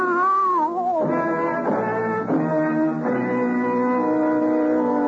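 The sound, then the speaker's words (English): Cats yowl in long, wavering cries in an alley, one sliding down in pitch before others join, their drawn-out wails overlapping loudly for several seconds without pause. “You'll lie in the blood of your death and try to explain how it was going to be to the attentive cats.”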